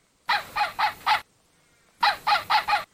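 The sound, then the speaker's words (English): A dog named Shackleton, contestant number one in a challenge, vocalizes on command when asked to "say Top Dog Hotspot". It gives two bursts of four harsh, raspy barking yelps each, evenly paced and separated by a short pause. The calls are loud and no one speaks over them. “Now, we have two dogs in front of us that are exposing themselves to the challenge to say Top Dog Hotspot.”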